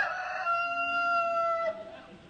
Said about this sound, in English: We included that recording of a cockerel for people who like that sort of thing.